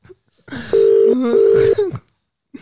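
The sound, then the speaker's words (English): A phone ringback tone sounds twice in steady electronic bursts, loud, with a short gap between, over some faint background noise, as someone calls a girl back. “I call that other girl back. Call her back.”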